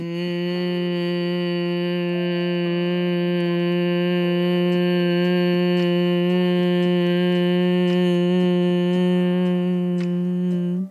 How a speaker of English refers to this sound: Again, breathing in through your nose, softening the eyes if that feels comfortable. An audible exhale, make that humming sound through the nose. Breathe in through the nose.